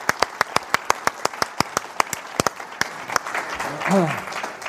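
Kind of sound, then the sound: crowd, audience applause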